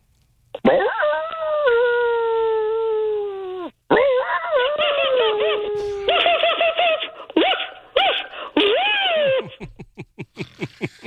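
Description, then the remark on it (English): People imitate dogs with their voices: a long sustained howl, then wavering howls and yelps, ending in a quick, loud run of short barking sounds. “Why don't you guys only talk like dogs for a second?”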